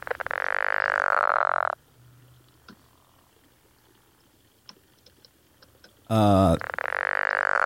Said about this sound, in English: That one is the eastern spadefoot toad.